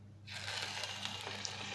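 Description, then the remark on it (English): Halloumi is put into a hot frying pan for a vegetarian weekend breakfast, with a sudden sizzle that settles into a steady crackling hiss, dotted with a few sharp spattering pops. There is no talking. “We got sizzle. And spatter.”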